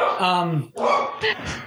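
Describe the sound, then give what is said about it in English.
A female dog lets out a few loud barks with a whiny, yelping edge, a longer drawn-out one followed by shorter bursts, with no other sounds around them. “She's great on podcasts, that dog.”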